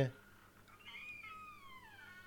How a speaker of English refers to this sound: Oh, a squeaky door.